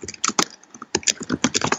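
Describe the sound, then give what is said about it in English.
Rapid, uneven clicking of computer keyboard keys being typed on, fairly loud, with a brief pause midway before the keystrokes resume in a quick burst. “So, are you typing?”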